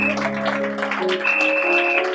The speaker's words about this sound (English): So let's do this. Let's stand to our feet and let's clap our hands and let's honor God for this great leader.